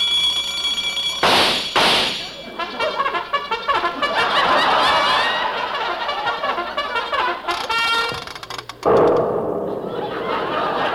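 A loud, chaotic clanging novelty alarm clock rings and rattles for several seconds, with bursts of noise, harsh tones and thumps piling together before it cuts out abruptly near the end.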